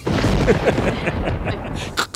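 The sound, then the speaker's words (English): A lightning bolt sound effect: a loud, crackling thunderous roar that rumbles steadily for about two seconds, with a couple of sharper bursts near the end and no talking. “And throw some lightning bolts in there.”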